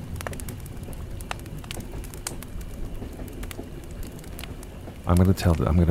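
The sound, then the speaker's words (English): Steady crackling and popping of a burning campfire, with sharp snaps scattered throughout before a voice breaks in near the end. “Why don't we walk our ears away from this campfire?”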